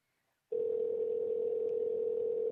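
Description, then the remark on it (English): An outgoing phone call's ringback tone, on a call to a seller about a reptile enclosure advertised on Craigslist: after a brief silence, a single steady, mid-pitched electronic hum sounds for about two seconds. It is loud and even, with no voices. “Oh, it doesn't sound like he's going to answer either.”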